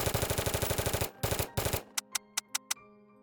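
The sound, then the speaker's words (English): Rapid machine-gun fire rattles in a fast, loud burst for about a second, followed by a few heavier blasts and then scattered single shots trailing off with gaps between them. “A man got out and kicked in the front door of the restaurant, opening fire on the interior.”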